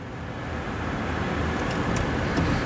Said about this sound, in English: And I'm not even on the freeway yet, and it's already trafficy on the little highway.